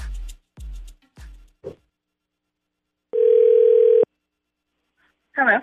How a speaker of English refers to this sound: All right, I'm dialing her. Okay, it's ringing. I hope she answers.